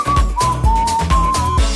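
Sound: whistling a tune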